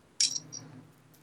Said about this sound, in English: Okay, I'm shuffling it back into the deck.